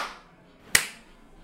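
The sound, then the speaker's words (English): A group claps together once, a single sharp, bright burst of hands that cuts off quickly and leaves a brief fading tail. No one speaks. “Everybody clap out one time.”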